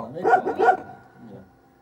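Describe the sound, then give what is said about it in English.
Two quick, loud dog barks played as a sampled sound on a keyboard, evenly spaced, followed by a softer fading tail. “got the sheep, yeah, the dog, and the pig.”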